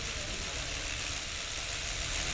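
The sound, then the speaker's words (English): A small hobby shop drone hovers, its rotors giving off a steady, dense buzzing whir that holds at an even, fairly loud level throughout, with no voices. “Okay, so just to refresh your memory, this is what a hobby shop drone sounds like.”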